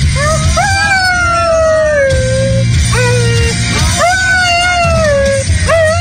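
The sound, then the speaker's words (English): A dog howls along in long, wavering rising-and-falling cries, several in a row, over loud rock music with a singing voice underneath. “Dumb dog doesn't even know the words.”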